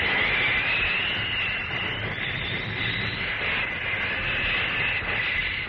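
A steam locomotive roars along, a steady, loud rumble and hiss with a sustained high whining tone running through it, continuous for several seconds with no voices.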